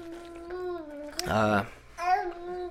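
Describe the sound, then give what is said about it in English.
A baby babbles in a run of high, sing-song vocal sounds, with a brief louder squeal in the middle and a softer coo trailing after. “I love babies. Hi, baby.”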